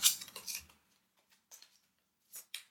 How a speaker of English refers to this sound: We are going to shuffle the diamonds. Take a moment, because these cards are face down. There we go. Ha-ha! And we are going to shuffle these, include one joker.